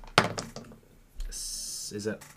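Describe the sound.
Percentile dice (D100) are rolled for a game check and hit a table with a sharp clack, followed by a few lighter rattling clicks as they settle, then a steady hiss and a brief murmur of a voice.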